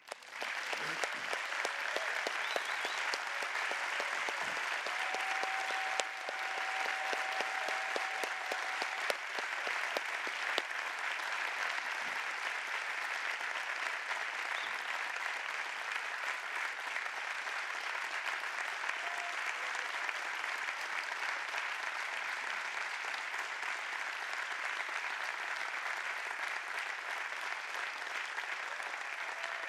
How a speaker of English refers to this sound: So I'm wondering, as hopefully they are watching us right now, that they're participating with us in spirit, if we could just offer him a supportive, like, round of applause to let him know that our hearts are with him as he sits in the hospital.